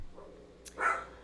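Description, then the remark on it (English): A single short dog bark rings out from a fairly quiet background, preceded by a brief sharp click, with no talking. “She's going to be balking like a freaking dog now.”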